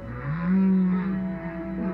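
A low, sustained song of a male baleen whale, recorded underwater, rises and swells into a long mournful tone, with faint higher harmonics above it. It sounds steady, and no one speaks.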